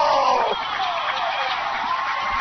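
A stadium crowd at Cliff Harris Stadium roars and cheers after a Wichita touchdown, a dense, sustained wash of voices that stays loud and steady throughout, with no individual words standing out.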